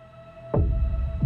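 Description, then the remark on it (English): A rapid heartbeat thumps loudly in deep, muffled pulses, two beats about half a second apart, over a faint steady electrical hum with no voices. “Becky felt her heart beat rapidly.”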